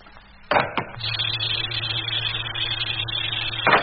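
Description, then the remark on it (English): A couple of sharp mechanical clunks, then a pump runs steadily with a low hum and a broad airy hiss for about three seconds, pumping the air out to leave a vacuum, before stopping with another clunk. No voices. “Well, that's the air pumped out.”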